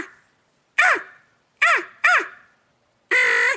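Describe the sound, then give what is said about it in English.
A crow call imitates cawing: four loud, harsh caws, three short ones spaced unevenly and a final longer, drawn-out caw, with no voices. “I bet you can call a crow in right now.”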